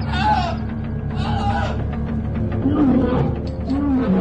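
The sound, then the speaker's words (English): A lion roars loudly and close by, deep rumbling growls rising in a couple of strained bursts over a continuous low, throaty drone lasting the whole few seconds. “That lion sounded too close.”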